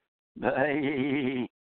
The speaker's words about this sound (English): by bleat we mean as in the kind of a sound that emanates from a sheep.